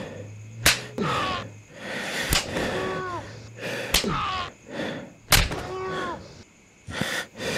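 A belt lashes someone five times at a steady pace, each crack sharp and close, with pained groans and gasps filling the gaps between strikes.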